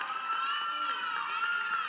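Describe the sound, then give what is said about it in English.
An audience cheering together, a steady wash of many voices with high, bright whoops and calls sustained evenly for the whole couple of seconds, no single speaker standing out. “She should get the cheering award, not me, because she had to put up with me for 23 years, okay?”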